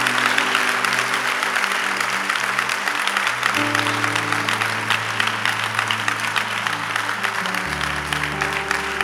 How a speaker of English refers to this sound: I want to give God a wonderful round of applause. You do it.